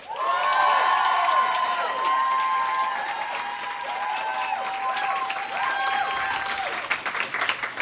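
A crowd applauds a contestant with steady, dense, continuous clapping, while rising and falling cheers and whoops ring out over it throughout, staying loud and full the whole time.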